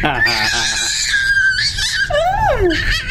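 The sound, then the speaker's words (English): A girl gives a loud, high-pitched happy squeal that stretches for about three seconds, wavering in pitch and ending with a swooping rise and fall, with no talking over it. “That is a happy squeal, ladies and gentlemen.”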